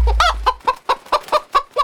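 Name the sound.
chickens clucking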